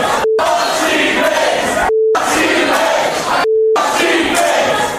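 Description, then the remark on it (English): A loud crowd roars, booing a performer on stage and chanting, cut by three short steady electronic beeps that briefly silence the noise at regular intervals. “So now they're booing me.”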